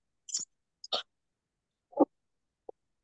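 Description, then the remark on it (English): A person clears their throat in a few short, rough bursts spaced by brief pauses, with the final one faint and clipped. No talking. “I was just trying to clear my throat.”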